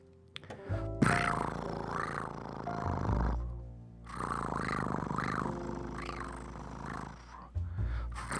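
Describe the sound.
A person mimics a cat's purr with a low, rumbling, rattling voice, loud, in two long sustained bursts separated by a brief pause, no words spoken.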